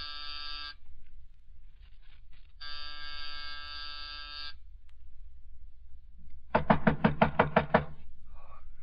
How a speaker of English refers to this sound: It was close to 5:00 when I rang his doorbell.